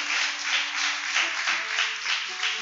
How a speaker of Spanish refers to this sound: Vamos a darle un fuerte aplauso a él.